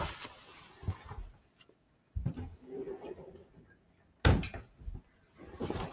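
Shuffling and handling noises lead up to the solid, sharp thud of a door that had been left open being pushed shut, followed by a few softer knocks and rustles.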